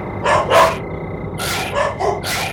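A small dog barks about six times in quick, uneven bursts, sharp and high-pitched, over a low steady background hum, with no one talking.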